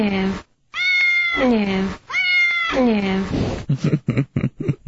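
A cat lets out two long, drawn-out meows, rising and falling in pitch, followed by a series of short, choppy vocal bursts.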